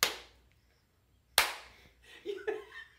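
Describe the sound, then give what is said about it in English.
Two sharp, loud slaps land about a second apart as players take turns slapping an outstretched hand in a hand-slapping game, each a crisp skin-on-skin smack, followed by short pained vocal yelps. “And you're gonna slap it like that, go taking turns until somebody yells mercy.”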